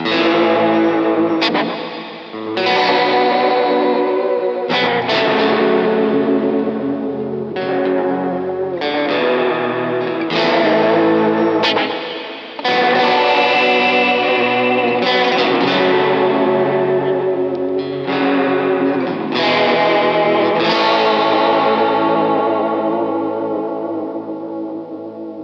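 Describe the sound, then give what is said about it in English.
A red teardrop-shaped Tokai electric guitar with a humbucker and two single-coil pickups (HSS) and a five-way selector plays through heavy distortion, dense sustained chords ringing out in steady bursts with brief gaps between them, loud throughout with no talking. “It's a Tokai. It's red. Yeah, it's red. A humbucker and two single coils. HSS.”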